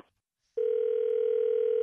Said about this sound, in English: Hello? Sounds like your cell phone dropped the call.